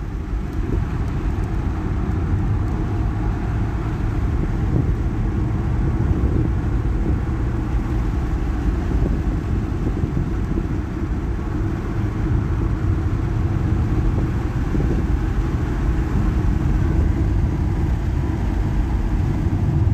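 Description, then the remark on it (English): A car engine drones steadily as the vehicle drives, a continuous low rumble with road noise that stays loud and even throughout, with no voices. “Oh, I love this car.”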